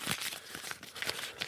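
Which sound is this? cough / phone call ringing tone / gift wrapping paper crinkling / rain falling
gift wrapping paper crinkling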